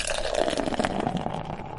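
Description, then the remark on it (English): A very carbonated hazy IPA, Up and Out from 2SP in the Philadelphia area, pours steadily into a glass, a continuous fizzy, splashing gush with crackling bubbles that holds its level throughout, with no voices. “This is one of those ones, and I'll pour it here for everybody to look at.”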